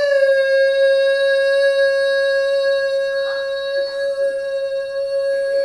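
A steady tinnitus-like ringing tone holds one unchanging pitch for the whole stretch, loud and continuous, with faint overtones and only slight murmurs beneath it.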